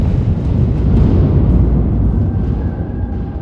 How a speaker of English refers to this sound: But he was about 6 years old when he discovered the grain silos on the farm. They would be empty until the harvest started, so they were like his own private echo chamber. If you jump up and down inside them, you can actually create thunder.